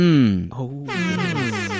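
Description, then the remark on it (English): A loud, blaring air horn sounds in two brassy, sustained blasts, the second one longer and buzzier, filling the whole clip. “So, sir, would you like to introduce yourself so I can give you some air horns?”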